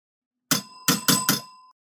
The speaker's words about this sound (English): Take the phone off the hook, please.